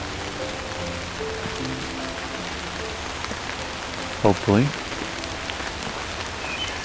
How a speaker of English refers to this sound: Rain is starting to die down.